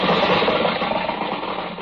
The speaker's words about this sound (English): Oh, here comes a car. Hey, mister, how about a ride to town?